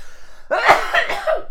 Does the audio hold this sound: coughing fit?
yes